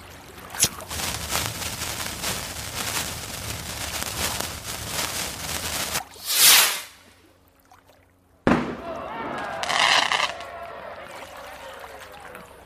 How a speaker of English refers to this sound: I don't think there are flares in here. It's hard to tell in the dark. I think they're fireworks.